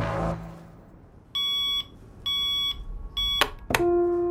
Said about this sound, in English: smacks the snooze button on his clock, silencing the deafening alarm.